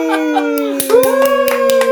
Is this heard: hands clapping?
yes